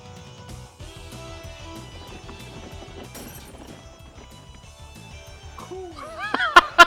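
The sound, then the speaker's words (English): Near the end, a sudden loud shattering crash with a couple of sharp smashing bursts cuts in over steady background music and warbling tones as a camera breaks. “Broke the camera.”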